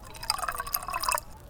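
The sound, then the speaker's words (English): Wine pours into a glass for about a second, a bright, gurgling trickle with rising pitch as the glass fills, fairly clear, then it stops abruptly. “You call that a wine pour? A little more, if you please.”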